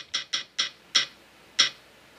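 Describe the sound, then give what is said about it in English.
A spinning wheel ticks five times, the sharp clicks spaced farther apart as it slows to a stop. The ticks are fairly loud, with no talking. “Let's spin it.”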